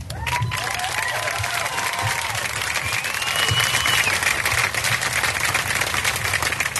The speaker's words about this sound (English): He introduced me, and you clapped.